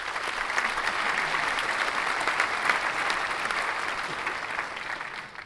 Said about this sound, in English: Nate, let's get some applause in here.